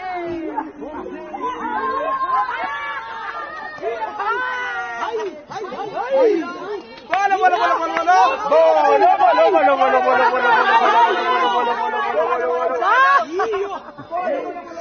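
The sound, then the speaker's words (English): A crowd of LGBTI members chants and sings traditional songs together in overlapping, wavering melodic lines, growing louder and fuller partway through with sustained, rhythmic group singing. “I'm going to move closer to the crowd as they continue to chant some traditional songs.”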